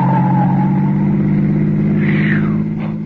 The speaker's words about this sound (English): Lordy, that was a close call. Why, it looked as if that car was deliberately trying to run you down.